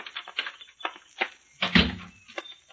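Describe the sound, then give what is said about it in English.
The lobby door at the end of the porch of the Lakeside Inn opens and shuts: a run of light latch clicks and rattles, then a solid thud as it swings closed, followed by a couple of softer taps. “That looks like the door to the lobby down there at the end of the porch.”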